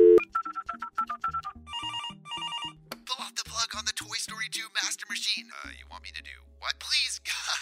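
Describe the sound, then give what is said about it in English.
A telephone rings in quick, repeated electronic trills for about three seconds, fairly loud, as a call is placed to the systems department, then gives way to hushed, breathy voices over a low droning background. “He frantically grips the phone and calls systems.”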